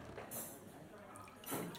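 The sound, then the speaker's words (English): Water is poured from a bottle, a soft gurgle and splash running for a couple of seconds, fairly quiet, with brief hissy swells near the start and end. “Let's hear the pour.”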